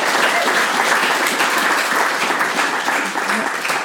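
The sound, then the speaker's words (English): A sustained round of applause from an audience at a live show, many hands clapping in a dense, steady wash of noise that stays loud throughout and dips only slightly near the end. “Let's give a warm round of applause for all the inspiring and moving stories we've heard here tonight.”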